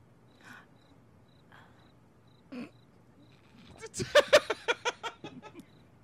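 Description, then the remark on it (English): Faint, thin cricket chirping sits in the background, then a quick rhythmic burst of about nine sharp cricket chirps rises and fades over a second or so, clear. “The crickets in the background.”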